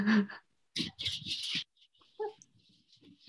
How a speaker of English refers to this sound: My dog is being so loud right now.